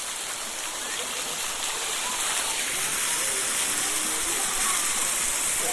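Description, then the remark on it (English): Steady rushing water of the Cascade d'Orbe waterfall in the south of France fills the scene, a broad hissing wash, constant and fairly loud with no pauses, with a faint high insect drone above it, on a very hot day. “All sounding very lovely with the insects and the sound of the water.”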